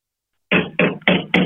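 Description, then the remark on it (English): Four loud, forceful knocks on a door in quick, evenly spaced succession after a brief silence, insistent. “Oh, that's my door. Sounds very funny. Aggressive knocking, which in no way means it's the feds.”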